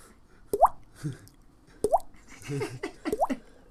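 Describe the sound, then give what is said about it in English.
A voice imitates the water drips of a leaky faucet with three distinct mouth-made plops, each a sharp click that rises in pitch, spaced about a second apart, with soft breathy murmurs between them. “please give us a couple of drips. I need a leaky faucet real quick.”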